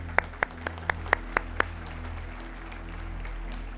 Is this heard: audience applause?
yes